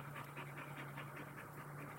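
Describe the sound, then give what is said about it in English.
A boxer dog named Maverick pants heavily and steadily, quick rhythmic breaths repeating several times a second, fairly soft, with a low electrical hum underneath and no talking. “And in the background, the heavy breather is my boxer, Maverick.”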